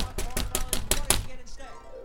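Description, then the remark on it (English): A police officer knocks on the door of trailer number 11 on Sweet Avenue, with a TV on inside: a quick run of about six or seven firm, evenly spaced knocks, each sharp and hollow, followed by a second of low, quiet background. “He can hear the TV is on inside, so he knocks.”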